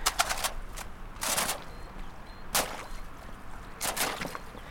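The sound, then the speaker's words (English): Thin ice on frozen flood water cracking and crunching under wellies in irregular bursts, sharp, somewhat metallic crackles clustering with each step, against a quiet outdoor background with no talking. “there's lots of flood water here and it's all covered in ice, so I'm going to see if I can”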